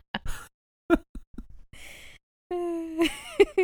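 A neighbor's series of loud sneezes heard through a wall: short sharp breathy bursts, a hissing exhale, then a drawn-out voiced wind-up ending in two forceful snaps. No one talks.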